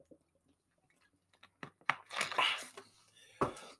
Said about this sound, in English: Sorry, guys, just going to have a swig of water.